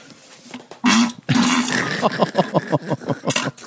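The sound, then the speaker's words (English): A fart opens with a loud, low popping burst, then stretches into a raspy, buzzing blast that breaks up into a quick, uneven series of sputtering pulses. No one speaks. “He doesn't even sign his fart.”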